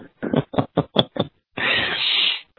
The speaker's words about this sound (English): There goes the printer turning back on. Power came back on as quick as it went off.